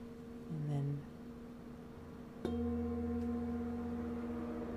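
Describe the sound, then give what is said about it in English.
A singing bowl placed on a person's lower abdomen during a quick sound bowl demo is struck once, then rings on in a steady, sustained tone with layered overtones that barely fade. A brief low murmur of voice comes just before the strike. “Kind of that like church bell sound.”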